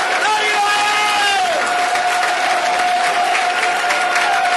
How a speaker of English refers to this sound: Little crowd pumped up there. We're waiting the entrance of the two teams. Here come the Lions!